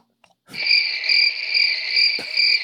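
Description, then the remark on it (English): A continuous, high-pitched cricket chirping trill starts abruptly and holds steady and fairly loud, with a brief click or thump partway through and no voices. “Before you go any further, can someone do that cricket sound?”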